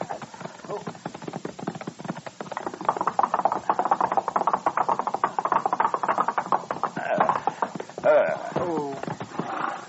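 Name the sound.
horse hooves clip-clopping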